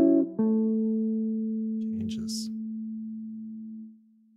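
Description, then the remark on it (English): A single sustained F sharp minor 7 chord with a soft, pure, organ-like tone rings steadily for about four seconds, fading gradually before cutting off, with a brief faint rustle partway through. “So the root note remains the same, but the quality of the chord changes to minor. So we have this tone.”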